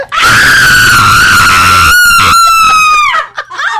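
A loud, sustained high-pitched scream holds steady for about three seconds, wavering slightly before breaking off abruptly, like a horror movie shriek.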